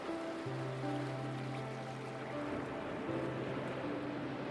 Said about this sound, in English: And you can hear the beautiful sound of gentle waves breaking on the shore.